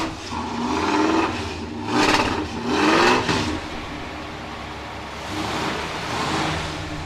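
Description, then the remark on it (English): The engine of a Metallicar, a car styled after the one in the show Supernatural, revs in a few loud surges, roaring up and dropping back with a deep rumbling idle between bursts; no one speaks. “That's a sound. That's a heartbeat.”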